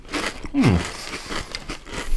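Crunchy bites into a crisp, smoky, spicy folded snack, a few sharp brittle cracks and chewing crunches over a couple of seconds, with a brief hummed voice sound mixed in.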